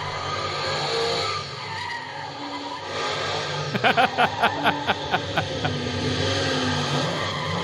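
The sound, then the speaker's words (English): A man drives his car around recklessly, tires squealing and skidding, punctuated midway by a quick run of rhythmic chirping bursts over steady, loud engine and road noise. “You see a picture of a guy driving his car around.”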